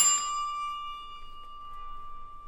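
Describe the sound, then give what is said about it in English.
A single doorbell chime strikes once and rings out with a clear, sustained tone that slowly fades, heard alone against a quiet background. “Looks at the camera and then rings the bell as it cuts back to black.”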